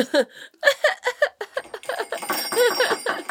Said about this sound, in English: That little Christmas bell by the fire.